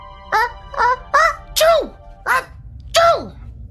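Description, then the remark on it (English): A person imitates a parrot's sneeze with six quick, squeaky vocal bursts, some sliding downward in pitch, spaced in an uneven rhythm, fairly loud, with no other talk. “I swear that he sneezed. His head went back and forward and made a little noise like...”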